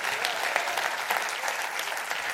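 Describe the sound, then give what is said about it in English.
An audience claps their hands in a steady, dense wash of applause, many overlapping claps forming a continuous crackling texture with small bursts of emphasis. “Come on, clap your hands.”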